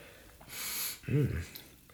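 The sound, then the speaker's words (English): A single long, breathy sniff inhales the aroma of a blue raspberry drink, then a short voiced grunt or hum of approval follows. “Sniff test.”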